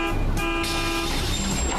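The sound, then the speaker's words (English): A bus horn gives a sustained toot, loud and steady with strong harmonic tones, over a rumbling vehicle engine. “But if you wait right here, in just about 2 minutes, the bus to point C will be coming right by.”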